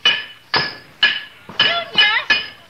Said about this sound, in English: Are you banging on that pipe with an iron bar? No, I'm using my head. Yeah, stop it! Do you want to stir up all the rust?